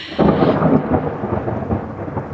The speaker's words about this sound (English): All we really need is like a clap of thunder and for our power to go out. Yeah, you'll have to search for some thunder sound effects to put in your podcast here.